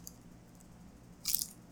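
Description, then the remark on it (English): A single short, crisp burst of crinkling plastic as a wrapped Tabasco-flavour Slim Jim meat stick is bitten, after a stretch of near silence, with no talking. “Hang on, let me see if I can get a crunch.”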